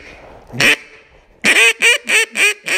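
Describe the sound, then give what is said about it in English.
A duck call blown to make a simple, light quack: one short raspy quack, a pause, then a quick, evenly spaced run of five light quacks, with no voices. “We're going to just do a real simple little quack, you know, just something light.”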